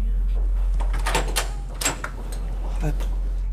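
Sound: door being shut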